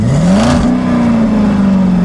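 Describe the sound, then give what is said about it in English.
A river boat's engine revs up with a rising, steady drone that then holds at a constant pitch as the boat eases away from the jetty, loud with no voices. “As the boat eases away from the jetty.”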